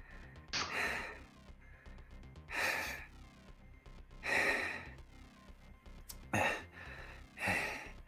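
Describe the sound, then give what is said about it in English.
A voice imitates repeated gasping: about six sharp, breathy intakes of air at uneven intervals, fairly loud, with no talking in between. “And after the break comes back, you're still just gasping.”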